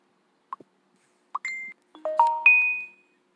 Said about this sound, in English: I'm trying to figure out how to turn these notifications off. Because it's starting to drive me nuts a little bit. Like right in the middle of a podcast, you keep hearing this do thing, whatever that sound is.